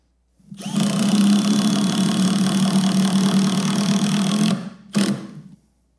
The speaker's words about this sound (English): That repeated thumping you heard, boom, boom, boom, boom, boom, boom, boom, with the impact driver, that's what makes it special.